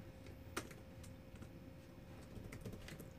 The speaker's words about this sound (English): That's exactly what I'm typing into Google. I think I'm about to find it.